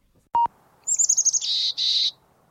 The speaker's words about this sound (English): It's a chickadee. Chickadees are sweet little birds who love visiting backyard bird feeders. They especially enjoy peanuts and sunflower seeds. They have a really distinctive song that sounds like their name. Chickadee, chickadee.